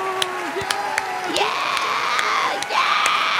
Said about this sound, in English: Oh, is that the arena applauding again? Whoa. That was the arena, yeah.